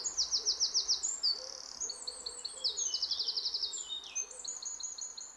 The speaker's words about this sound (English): What does hearing the sound of a bird do for your feelings in the moment?